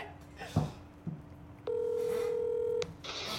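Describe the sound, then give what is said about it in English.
A dialing tone plays over an iPhone 10 on speakerphone as one steady, electronic beep lasting about a second. A few faint clicks and soft background noise come before it, and there's no talking. “You got the loud speaker now. It should be sufficient speaker phone.”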